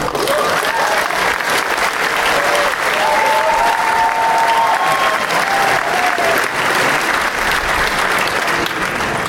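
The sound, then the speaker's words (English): An audience applauds steadily for several seconds as a guest from Warner Home Video is brought up for the DCU animated panel, a dense, even wash of clapping at constant loudness, with faint whistles or cheers rising briefly above it midway. “Give him an applause.”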